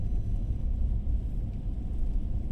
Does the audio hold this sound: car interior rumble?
yes